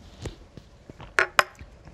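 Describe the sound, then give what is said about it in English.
Shot glasses clink together twice in quick succession in a toast celebrating a finale, two bright, ringing taps about a quarter second apart, with a few soft knocks and rustles before them and no talking. “Oh, we gotta do the touch thing.”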